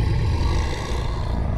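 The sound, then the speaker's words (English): A deep, rumbling demon growl holds steady for a moment, heavy in the low end with a harsh, breathy texture over it and no voices. “He let out another growl to try to shake me.”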